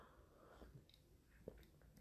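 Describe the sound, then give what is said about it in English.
A quiet sip of coffee: soft slurping and mouth noises with a small swallow, then a brief click near the end, with no talking. “So I'll drink another sip of the coffee to that.”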